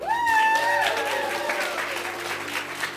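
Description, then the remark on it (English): A large audience applauds loudly and steadily after a poetry performance, people rising to their feet and cheering, with a high sustained cheer or whoop rising over the dense clapping near the start. “The applause rises, then so do the people on their feet cheering her.”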